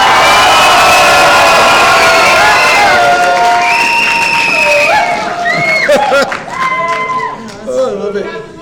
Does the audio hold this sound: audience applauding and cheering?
yes